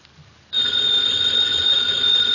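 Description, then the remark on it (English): In a Nero Wolfe radio drama, a telephone bell starts ringing abruptly after a brief quiet moment, a continuous loud, shrill metallic trill that holds steadily to the end with no voices. “Ladies and gentlemen, that phone bell means adventure.”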